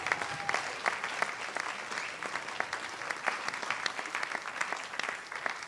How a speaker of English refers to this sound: And that's very much thanks to all of you. So give yourselves, all of you, a great big round of applause.